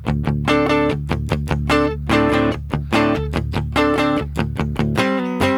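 An electric guitar plugged direct in, with no amp and no distortion, plays a fast, chugging riff of repeated chords and single notes, clean and steady for several seconds with no voices.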